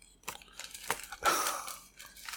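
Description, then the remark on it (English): Crunchy munching on a pumpkin spice Oreo cookie, a quick series of crisp, crackling bites with one louder crunch in the middle, with no talking. “Oh, munch, man. All right, well, pick out an Oreo.”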